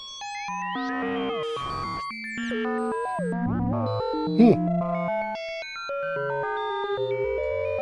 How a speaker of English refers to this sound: And the sine waves was nuts. Yeah, I really like the FM sine wave, like classic. Heinbach would like this. Yeah? Because it sounds like his test equipment, you know? Sine waves and stuff.